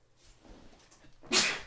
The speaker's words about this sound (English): Whoa. Wolf sneeze. Need some wolf bane.